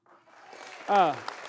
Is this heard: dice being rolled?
no